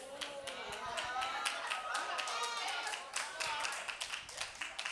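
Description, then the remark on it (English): Scattered soft hand claps from an audience patter steadily through the whole stretch, light, while a voice talks over them. “I like them soft hand claps. I like them little soft hand claps, y'all.”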